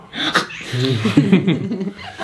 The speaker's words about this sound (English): What if I sneezed right now?